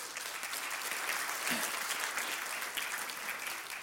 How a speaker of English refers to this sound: Let's give her some applause.